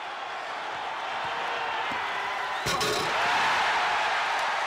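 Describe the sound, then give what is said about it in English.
A large crowd roars and cheers steadily at a slam dunk by Michael Jordan in a judged dunk contest, a dense wash of noise that swells slightly after a sharp impact partway through and stays loud to the end. “Well, the crowd lets you know what they think of it.”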